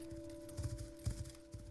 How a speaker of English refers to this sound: Grabs the reins and slows the horse down and turns it around and heads back.